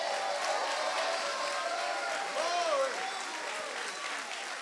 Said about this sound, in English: If you can testify this morning that God keeps his word and that God's able to do mighty, mighty things, let him hear your resounding hand clap one more time in the sanctuary. Come on, make a joyful noise.